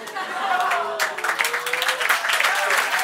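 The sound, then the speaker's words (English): A burst of rapid clapping in response to a pun starts about a second in and keeps going to the end, steady and fairly loud, with a voice talking and laughing over it. “I'm clapping for the pun.”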